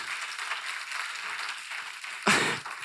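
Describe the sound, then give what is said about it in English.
A church audience clapping together, a steady dense patter of many hands that swells into a louder burst of applause near the end before settling again. “And the people here are clapping.”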